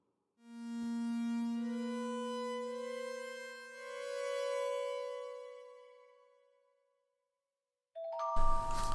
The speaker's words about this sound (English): The chime of an incoming message broke the silence that had temporarily descended in the study of the Sherlock Holmes Museum.